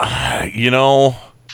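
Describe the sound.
A long, drawn-out yawn: a breathy onset rising into a voiced, gliding groan that holds for a moment and then trails off, followed by a faint breath.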